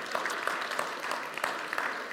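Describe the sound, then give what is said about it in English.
A crowd claps steadily for a runner who finished the run in 1 hour 55 minutes, a dense, even patter of many hands with frequent sharp individual claps popping out, sustained at a moderate level throughout with no talking. “He's a machine, and you can give him a proper clap.”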